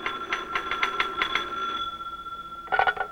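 A telephone bell rings in an FBI field office in the evening with a rapid, rattling trill, falls silent for a moment, then starts a second ring. It sounds clear, with no one talking.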